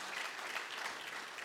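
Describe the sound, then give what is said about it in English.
A crowd claps steadily, a dense, even patter of many hands that stays at a constant moderate level for the whole moment, with no voices standing out. “it's a tremendous, and do no harm to give you a round of applause, but I tell you, it's great to see you.”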